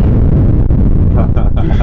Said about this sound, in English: What's a good time without an explosion?